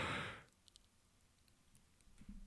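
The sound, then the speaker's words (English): A yawn ends in a loud, breathy exhale lasting about half a second at the very start, followed by near silence with a few faint clicks and a low murmur toward the end. “This is the record 3 yawns in a podcast.”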